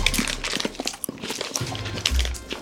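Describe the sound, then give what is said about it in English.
Several people crunch into plant-based chocolate bars at once, including chocolate orange and creamy coconut flavours, a dense run of irregular, crackly bites and chewing that overlap at a moderate level, with no talking. “So we're all crunching at the same time.”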